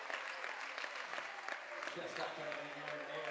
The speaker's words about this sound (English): But leading scorer here for the Patriots is fouled out of the ball game. Jansen will leave with 17 points in the game. And he'll get a nice round of applause, deservedly so, by the Patriot faithful.